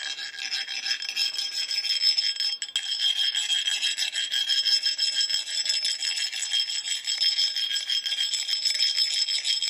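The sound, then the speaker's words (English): Steady rasping of a couple of different sanding tools rubbed against wood, continuing for about ten seconds with a gritty, slightly rhythmic scratch and no talking. “A couple of different sanding tools.”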